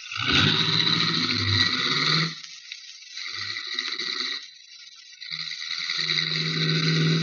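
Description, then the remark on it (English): A car engine revs hard and roars, surging in several loud bursts with brief dips between them as it pulls away; nobody speaks. “In that case, we will use your car instead of mine, and you can be the chauffeur. Step on it.”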